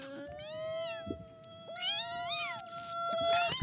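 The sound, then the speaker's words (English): A fly buzzes in a thin, whining drone that swoops up and down in pitch over a steady underlying hum, with a few soft knocks in the background and no talking. “Finally got the fly.”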